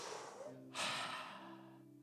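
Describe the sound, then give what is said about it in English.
A deep, audible breath: a breathy draw, then a fuller, louder rush of air exhaled over a steady, sustained musical tone in the background. “It feels good to breathe this morning. I think I'm just going to keep on doing it.”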